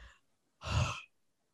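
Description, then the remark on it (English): A single breathy yawn, about half a second long, with a low voiced groan under the rush of air. It stands alone, with silence on either side and no talking. “Sorry, I'm yawning because it's exhausting to even think about.”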